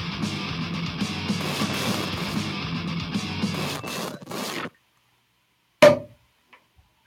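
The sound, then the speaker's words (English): A champagne bottle cork is worked loose with several seconds of steady rustling and hissing, then a pause and a single sharp pop that rings briefly, followed by a faint click. “Opening a bottle of champagne in the cork.”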